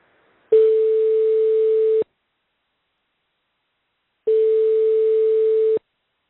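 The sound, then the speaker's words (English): A telephone ringing tone plays through the line for a call to the United States, two long steady electronic tones about a second and a half each with a pause between them, clear and fairly loud with no voices. “Let's join Geoffrey now on the phone from the United States.”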